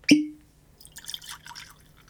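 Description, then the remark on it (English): A single ringing clink of glass, then after a short pause 125-proof whiskey pours with a soft, uneven gurgling splash into a glass for about a second. No one speaks. “So I'm gonna get it poured, and let's go in and see, is this whiskey any good for $30?”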